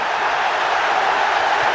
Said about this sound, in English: Would you believe it? From one end of the field to the other, the crowd are in raptures. The England players too.